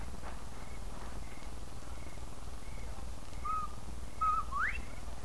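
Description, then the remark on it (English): A person whistles a two-part bobwhite-style call, a short low note followed by a sharp rising slide, heard clearly over a steady low background hum with faint softer whistles earlier. “When you're ready, whistle like a bobwhite.”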